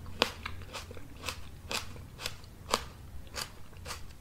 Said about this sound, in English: So at one point, we had a dancer eating grapes on stage and chewing grapes. And so I decided to amplify the sound of the grape chewing.